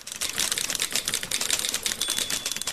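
Rapid, continuous clacking of typewriter keys, a dense stream of sharp strikes with no pauses, fairly loud, with no voices.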